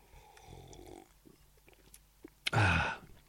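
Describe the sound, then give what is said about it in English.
A quiet slurp or gulp of a drink, ending in a short, loud breathy burst after a few soft mouth and handling noises. “Okay, hang on, I'll have a sip of...”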